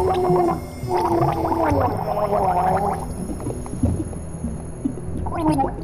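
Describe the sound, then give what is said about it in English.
A voice gurgles wetly through a mouthful of water, producing bubbly, warbling tones that rise and fall in two bursts with a short pause between. “I can't understand you with all that water in your mouth.”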